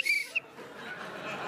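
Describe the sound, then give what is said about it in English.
A coach's whistle gives a shrill, high-pitched blast followed by a quick short chirp, then fades into a soft background hiss. “Oh, wait, I have a whistle, too.”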